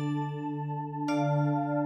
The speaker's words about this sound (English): You can tell when the scenes begin and end because of our cool chime noises.